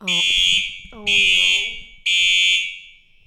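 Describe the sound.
A loud, shrill fire alarm in a dorm blares in three long, evenly spaced blasts, piercing, during a storm, while people's voices murmur faintly underneath.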